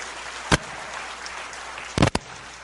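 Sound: audience hand clapping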